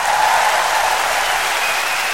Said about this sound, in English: Now, hold your applause, please. Hold your applause.